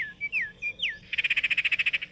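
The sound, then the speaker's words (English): A northern oriole gives a few clear, sliding whistled notes, then breaks into a fast, even chatter of about a dozen harsh pulses, fairly loud with no voices. “Northern oriole.”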